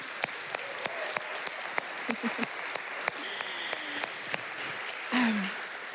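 An audience applauds warmly, dense clapping from many hands filling the whole stretch with sharper individual claps popping out, and a short vocal whoop rising near the end.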